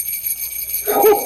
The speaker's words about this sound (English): But those sleigh bells are getting closer. I can hear them.